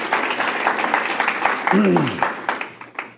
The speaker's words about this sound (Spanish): Démosle un aplauso al Rey de Reyes. Gloria a Dios.